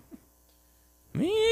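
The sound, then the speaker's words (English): A person's voice imitates a cat's meow: one drawn-out, rising vocal tone, fairly loud, starting abruptly after about a second of near-silence with a faint background hum. “Meow.”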